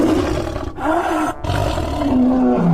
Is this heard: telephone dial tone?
no